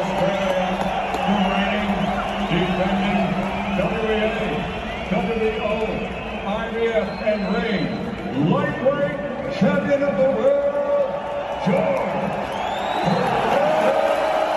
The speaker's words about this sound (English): And then the next one was when they announced Kambosos' name. Like, this is probably the loudest cheer of the whole day. It was fucking insane.